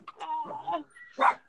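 A dog gives a few short, whiny yips, then lets out one sharper, louder bark near the end. No one is talking.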